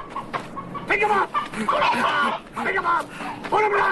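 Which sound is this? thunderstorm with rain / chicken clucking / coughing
chicken clucking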